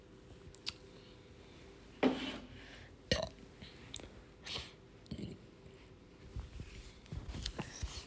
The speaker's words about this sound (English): I don't know why that burp tasted like candle wax, and I don't know why I know what candle wax tastes like.